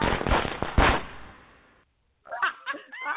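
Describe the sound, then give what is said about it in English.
A firecracker sound effect played on a radio call-in show goes off, with loud sharp bangs and crackling that fades over about a second. A brief silence follows before a person starts talking. “Here she goes. That's the firecracker.”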